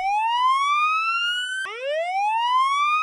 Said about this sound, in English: That alarm is so annoying. It is. You could have chosen another one. I didn't choose it. It chose us.